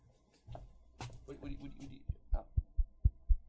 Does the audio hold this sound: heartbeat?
yes